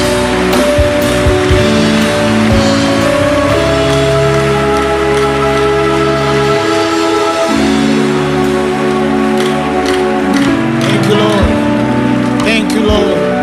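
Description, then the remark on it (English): An audience claps hands in praise to the Lord, a dense, steady patter of many hands that runs loud throughout over sustained keyboard chords. “I want you to give Him a mighty hand clap of praise.”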